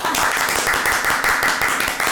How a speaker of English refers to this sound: Cue the round of applause. Yeah.